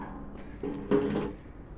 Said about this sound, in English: that noise of those chairs must be really nice for people